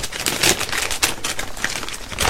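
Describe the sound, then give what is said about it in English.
Doctor Who wrapping paper being torn open to unwrap a gift of Doctor Who action figures, a continuous crinkly ripping with rapid bursts of rustling and tearing, fairly loud and alone without any voices. “I don't know, why am I using it on the wrapping paper? I don't need to use it on the wrapping paper, that one.”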